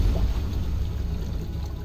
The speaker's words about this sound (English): Again, the fall is short, but this time my body pierces the surface of ice-cold water that steals the breath from my lungs. I manage to surface, gasping for air. I'm no longer in a room, but floating alone in a wide, open ocean.